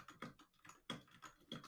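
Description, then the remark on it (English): Rapid keystrokes clatter on a mechanical keyboard in uneven bursts, each press a sharp click. The typing is fairly quiet, with no voices. “I see some furious typing going on over the, I was trying to make it very quiet typing and just struggling with my keyboard.”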